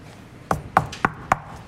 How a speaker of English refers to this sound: Judas knocks at the door.